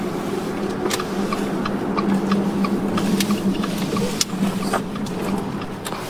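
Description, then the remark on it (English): A car rolling in to a stop in the empty yard of a Georgian-style mansion on Princeton Pike: a steady engine rumble and hum with scattered light clicks and ticks over it, no voices. “His car stops in an empty yard and a Georgian-style home can be seen from a distance.”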